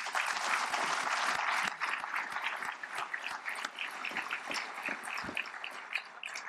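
A crowd at a Villanova reunion breaks into sustained applause for Father Peter's 10th anniversary leading Villanova, many hands clapping in a dense, steady patter that stays fairly loud before thinning slightly toward the end, with no voices.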